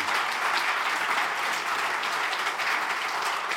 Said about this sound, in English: More rounds of applause are good.